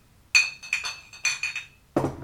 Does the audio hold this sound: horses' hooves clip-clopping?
no